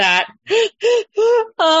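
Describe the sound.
A voice imitates crying: a series of short, choked, pitched sobbing bursts in an even rhythm, the last one louder and rising as if breaking into a wail.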